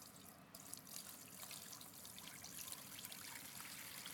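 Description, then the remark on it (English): Water is poured steadily into a tub holding a plate, to soak it: a continuous splashing trickle that runs unbroken for several seconds with no voices over it. “Because think about it, as I place this plate in this tub, and soaking requires liquid, right? So I'm gonna pour.”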